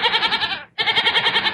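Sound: goat bleating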